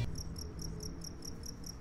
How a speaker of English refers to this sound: Crickets.